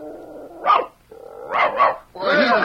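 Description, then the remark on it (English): A dog, Deuce, barks three times to signal that a lady's hair is red, one sharp bark followed by two quick ones close together, loud, with a steady whiny tone underneath and a strained, whining sound at the end. “Deuce, tell the lady the color of her hair. Speak once for black, twice for brown, three times for red, and four times for yellow.”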